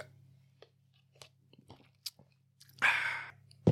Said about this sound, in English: It's Crown Royal vanilla. Yeah, I'm about to take this gulp. It's not even a sip. I'm just gulp the rest.